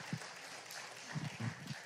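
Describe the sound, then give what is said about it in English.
A church audience claps in a round of applause for the leaders, staff and givers behind the kids' VBS, a dense steady patter of many hands at moderate volume, with a few low murmurs underneath. “So give yourselves a round of applause.”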